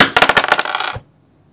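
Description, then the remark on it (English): Dice are rolled with no talking for a DC 4 psychic roll, landing on two ones: a quick burst of sharp, bright clicks as they hit and tumble, then a brief rattling clatter that stops abruptly after about a second. “DC 4 and just make the roll.”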